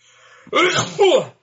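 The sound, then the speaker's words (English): A single loud sneeze bursts out after a brief quiet moment, with a sharp intake followed by a forceful two-part release. “Bless you.”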